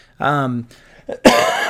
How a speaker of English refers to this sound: excuse me, they said this cough is going to last probably another month, you know, but I'm really grateful that that I'm better and that at least I'm getting better. I'm pneumonia free.